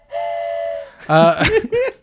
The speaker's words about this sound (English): I added the train.